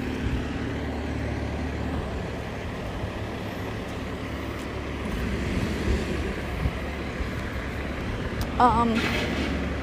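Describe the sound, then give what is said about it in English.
Heavy big city trucks rumble past on a busy city street as someone crosses it, a steady low engine roar with traffic noise throughout and a brief hiss near the end, like air brakes. “Holy shit, there's big city trucks running from me. I'm crossing.”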